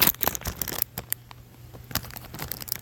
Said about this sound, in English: Every little thing you do with the phone makes it sound so intense on the microphone. So sensitive.